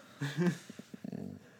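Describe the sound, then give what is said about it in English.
A needy dog whines for attention, a drawn-out high-pitched whine followed by a few short whimpering yelps and a quick fluttering run of soft whimpers, fairly quiet. “The dog is super needy.”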